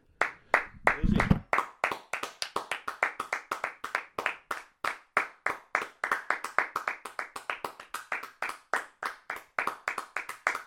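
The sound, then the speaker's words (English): Steady clapping by a small group for about ten seconds in tribute to rugby union player John Eels, sharp overlapping claps in a fast, slightly uneven rhythm with a brief low rumble near the start, no talking. “Whenever we talk about Union, we need to do a 10-second clap for how good John Eels was.”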